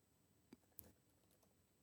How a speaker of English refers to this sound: I mean, whoever's chewing in the microphone. Nobody's chewing in the microphone. I'm typing.